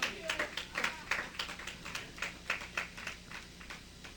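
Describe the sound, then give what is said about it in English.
A church audience claps during a sermon in a quick, steady rhythm, a run of sharp, bright hand claps that stays fairly soft and carries on for several seconds with no voices on top. “Someone clap for me.”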